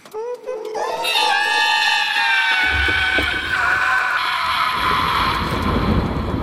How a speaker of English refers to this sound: That lightning strike was too close.